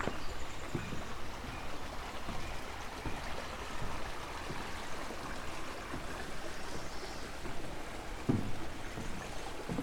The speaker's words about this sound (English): Just crossing over Bronte Creek at a spot where it's very narrow.